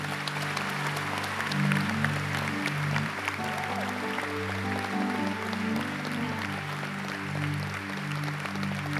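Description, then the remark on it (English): A crowd claps steadily throughout, a dense wash of hand claps over a low, droning musical backing with sustained tones. “You are not clapping well”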